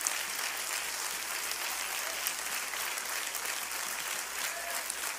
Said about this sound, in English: Oh, clap your hands this morning.